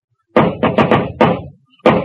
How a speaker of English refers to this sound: No, it's the ghost coming for me. In a minute, he'll knock on that door. If you're going to knock, knock.